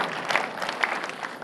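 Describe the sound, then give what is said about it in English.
Scattered, light applause from an audience, soft individual claps rather than a full ovation, with a few sharper claps standing out against a low crowd murmur. “I feel like a golfer with all the golf claps.”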